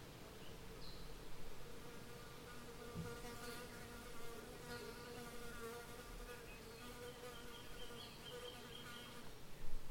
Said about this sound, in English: Each individual mud dauber wasp lives less than a year, so presumably it has no memory of the cycle of seasons, and perhaps little understanding of the passage of time.